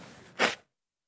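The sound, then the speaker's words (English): A single short, forceful nose blow, a breathy hiss-like burst rising out of low background murmur and cutting off abruptly into silence. “I'm going to blow my nose real quick, so if you want to help me out with that.”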